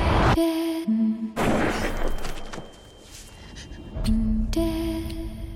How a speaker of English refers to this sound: I heard a gunshot.